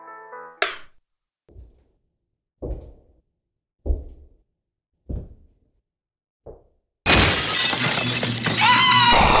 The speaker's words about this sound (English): She let out a scream as the sound of shattering glass filled the now silent room. The curtains blew inward, flapping noisily,